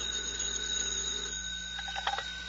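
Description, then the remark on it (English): A telephone rings at FBI headquarters with a steady, high-pitched electronic tone that holds throughout, then warbles in a short burst of chirps near the end. No one speaks. “Tonight's FBI file continues at headquarters where Special Agent in Charge Woods receives a phone call.”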